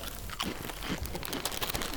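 Steady crackling and crunching as bags of crisps are opened and crisps munched, with dense irregular crunches running throughout and no talking.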